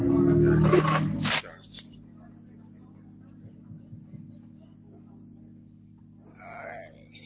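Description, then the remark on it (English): Keys are handled in a loud, brief burst of jingling and rustling that lasts just over a second, then give way to a low steady hum with faint scattered noises. “Got somebody keys over here.”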